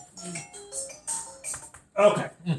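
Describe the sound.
A second mobile phone rings with a short melodic ringtone of stepped electronic notes, clear, followed by a brief burst of someone talking.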